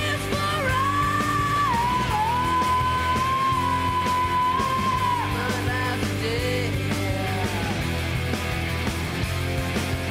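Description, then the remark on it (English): A raw, sustained screamed vocal from the opening song of a 1994 rock album cuts through loud, distorted rock guitars and drums, holding one long strained note for several seconds before breaking off as the band keeps pounding. “That scream is fucking so powerful.”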